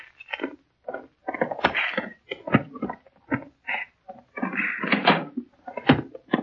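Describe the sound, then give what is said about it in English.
A door is unlocked with keys and opened: a quick run of sharp clicks, rattles and wooden clunks with short gaps between them, and no one speaking. “All right, go ahead and open the door, sort of. Here's the keys.”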